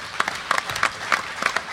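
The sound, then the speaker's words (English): An audience applauds mentors serving in a fellowship program, a steady wash of many hands clapping with sharper individual claps popping out at a fairly even rhythm, moderately loud and with no voices over it. “And for those of you who've agreed to serve as mentors in the fellowship program, my applause goes out to you, and if everybody can, because mentorship is a two-way street.”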